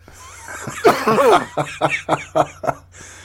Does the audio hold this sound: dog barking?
no